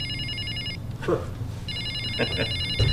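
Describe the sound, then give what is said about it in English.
A tinny electronic phone ringtone chirps from an opened Polaroid promotional musical greeting card given to reps, in two warbling bursts, pausing briefly with faint handling noise between them, steady against a low background hum. “When I open the card, I thought the first thing I thought was, why is my cell phone ringing a different tone?”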